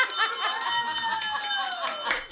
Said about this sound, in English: Look at this. We'll ring the bell.